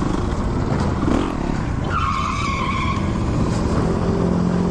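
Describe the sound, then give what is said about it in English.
A motorcycle with dual exhaust, ridden by a YouTuber, roars loudly and steadily, with a sharp tire squeal cutting in partway through before the engine noise carries on. “This is this dude riding his bike.”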